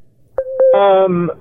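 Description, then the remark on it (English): A brief telephone ring: a steady mid-pitched electronic tone with two sharp blips, then a voice imitating the ring with a loud, buzzy, drawn-out call that slides down in pitch. “Hold on, my phone is ringing, Mr.”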